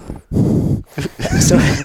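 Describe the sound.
A voice imitates heavy, loud breathing into a new headset microphone, with three rough, breathy bursts separated by short pauses, harsh and slightly growly.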